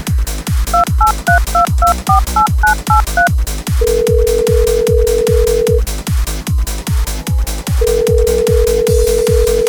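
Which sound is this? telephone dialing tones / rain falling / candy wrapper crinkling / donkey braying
telephone dialing tones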